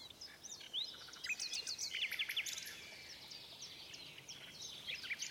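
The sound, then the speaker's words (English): A nightingale sings a steady, fairly quiet stream of rapid chirps, trills and sharp whistled notes, with no voices, just soft background hiss underneath. “The poor nightingale was now a prisoner and very sad.”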